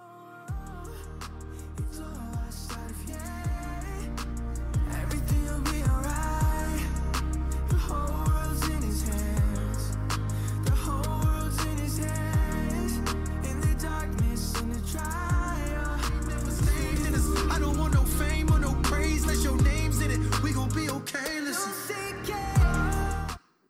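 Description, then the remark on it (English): A hip-hop song plays loudly and continuously, driven by a steady, punchy bass-heavy beat with layered melodic parts and vocals over it, ending abruptly. “We're going to play a minute and 20-second clip of that song.”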